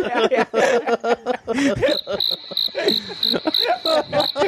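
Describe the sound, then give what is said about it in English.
A cricket chirps in steady, evenly spaced pulses after a joke, starting partway through and continuing to the end, while people keep talking over it. “I can't believe that cricket paid to come in here.”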